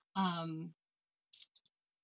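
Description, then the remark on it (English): A brief hum of a voice, then after a pause a few quick, soft computer mouse clicks in a loose cluster, fairly faint, as someone clicks through items while browsing on a computer. “I'm sorry if that's making like clicking noises as I click through.”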